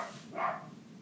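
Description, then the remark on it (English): A single short dog bark rings out, somewhat muffled, over a low background rumble with no one talking. “I might kill that dog, you know, wee dick, go up and sort him.”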